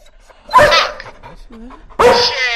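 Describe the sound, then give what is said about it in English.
A dog barks loudly, two sharp barks about a second and a half apart, with faint rustling and quiet sounds in between. “So we actually have this new dog collar. Well, do you know what your dog is really saying?”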